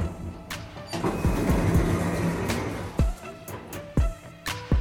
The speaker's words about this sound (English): Doors opening.